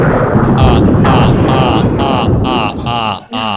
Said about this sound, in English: Now that we have that working, I'm so amped. I'm going to be cueing thunder all the time. Everybody in this room wishes they could cue thunder.